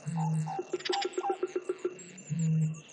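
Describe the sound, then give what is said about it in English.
Calls of endangered birds: a low, droning hoot opens and closes the sequence, with a rapid run of about ten evenly spaced clicking chirps between them. Loud, with no talking. “But yes, an album entirely made of endangered bird calls beat them.”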